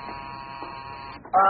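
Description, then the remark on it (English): A doorbell buzzer drones in one steady, harsh electric buzz for over a second, cuts off briefly, then a louder tonal burst starts right at the end. No one speaks. “First the door, then the phone. Then the door again.”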